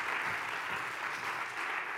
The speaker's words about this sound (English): And you can clap. Come on. People get gifts. We clap.